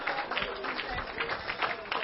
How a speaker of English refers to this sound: Clap your hands all over this room and let the Lord know what you think about him.